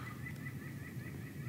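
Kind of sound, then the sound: bird, birds calling outdoors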